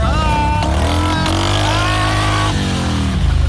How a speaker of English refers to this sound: Okay, here we go. We're starting up these. Look there. So they're like little John Deere lawnmowers.